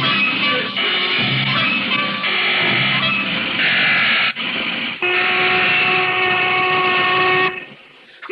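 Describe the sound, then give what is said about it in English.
A factory's loud, sustained steam lunch whistle blows for about seven seconds, its steady tones shifting slightly in pitch before cutting off, with no talking. “That's the lunch whistle”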